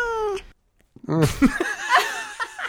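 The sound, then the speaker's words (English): High, harmonic kitten yowls and meows, a drawn-out wail then a burst of overlapping squeals and cries like a scuffle, fairly loud, with a brief silent gap between. “Cat fight. That's like a kitten, though. I don't know. Kitten fight.”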